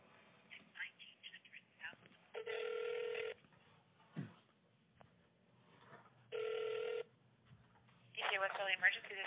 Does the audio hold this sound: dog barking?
no